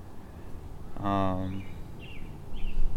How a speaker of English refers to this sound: The birds are chirping. Can they hear that? They might be able to hear that.